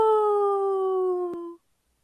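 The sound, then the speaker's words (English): A single long wolf howl, a steady, slightly falling tone that holds for about a second and a half before cutting off, heard alone with no talking. “That was my lone wolf howl today, guys.”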